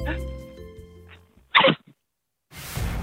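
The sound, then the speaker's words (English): A person imitates a 25-year-old bride sneezing at the altar mid-wedding ceremony, with a vocal buildup and a sharp, loud burst, followed by a pause and then a stretch of noisy, breathy sound. “She feels a sneeze coming on. What does she sound like?”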